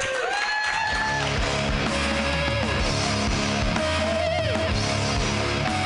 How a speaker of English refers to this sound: Keep your hands clapping for FC Sierra and all the amazing comedians you saw tonight.